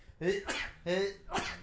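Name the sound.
sneeze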